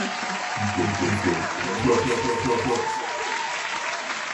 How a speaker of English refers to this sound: Give her some applause. I want to clap on the mic. Let's go.